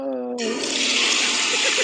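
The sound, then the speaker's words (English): A brief voice gives way to a sudden, loud, steady rush of water pouring out to put out a fire, continuing without a break to the end. “You know what works well to put fire out? What's a little that? Bit of water.”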